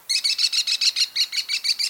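An American kestrel, a small falcon, gives a rapid run of about a dozen shrill, piercing 'klee' notes, evenly spaced and loud, with no other sounds around it.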